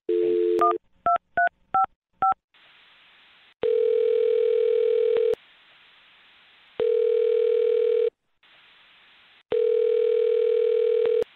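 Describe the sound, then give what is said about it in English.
A quick run of touch-tone beeps as a woman's phone number is dialed, followed by three long, steady ringing tones separated by pauses, heard clear over a line with no one speaking. “Well, I'm going to dial her phone number right now and see if we can help you out.”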